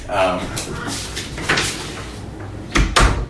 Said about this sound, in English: So give me one moment as I close this door. Hold on.